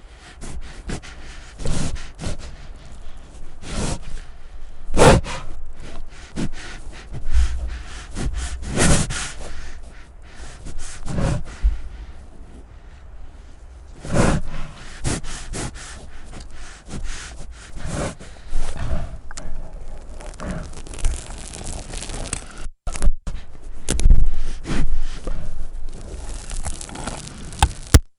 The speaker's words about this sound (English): And the reason it feels so chilling is because it's a polar bear physically chewing on the microphone windscreen. He's chewing on the screen is what you're hearing. And that's why it feels so up close.